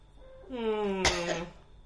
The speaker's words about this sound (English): What? Why are you coughing? I had something in my throat.